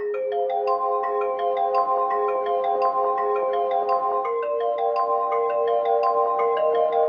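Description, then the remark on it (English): Sampled bell tones play a slow melody, each struck note ringing on and overlapping the next in rising and falling steps, at a steady moderate loudness with no voices. The tones were recorded from floor panels that make bell tones when jumped on, at St. James Park. “So you'll hear those bells throughout the song, and I just love knowing that a piece of that cathartic trip is a part of the song.”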